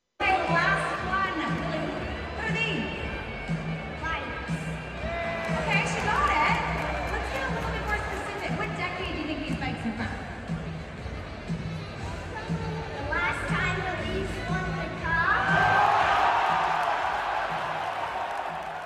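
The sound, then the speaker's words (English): A hockey arena crowd of about 18,000 fans at a Canucks game murmurs and chatters steadily, then surges into a louder burst of cheering and excited shouts near the end, reacting to a young girl, before easing back into a busy roar. “She looks to be maybe 8-9 years old, give or take, but let's just say she got a reaction from the crowd.”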